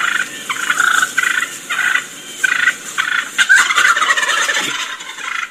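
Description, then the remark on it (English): A wild turkey hen calls in quick, agitated bursts of raspy, high yelps and clucks, repeated about six times with short gaps, fairly loud with no talking. “A little bit of agitated hen stuff.”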